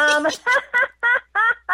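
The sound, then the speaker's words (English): A startled pet cockatiel named Lucy, frightened by a scream, squawks in alarm, letting out six or seven harsh, grating calls in a quick, steady rhythm, loud, with no talking. “So I have a cockatiel, you know, they have those feathers on their head, and when they get alarmed, they stick straight up.”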